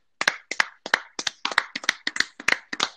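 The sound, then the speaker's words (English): A short run of about ten crisp hand claps given as a shout-out to Toronto, in a quick, fairly steady rhythm, sharp and bright, lasting under three seconds with no talking over them. “I think we should do a little clap.”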